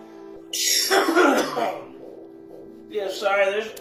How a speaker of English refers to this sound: Yeah, sorry, there's going to be coughing in this one. Oh, yeah, we're fucking dabbing. We're fucking smoking moon rocks. This is some peanut butter breath moon rocks we got here.